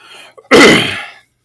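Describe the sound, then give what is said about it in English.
A single loud, explosive cough, preceded by a quick sharp intake of breath, then silence. No talking. “I don't know why I'm coughing all of a sudden.”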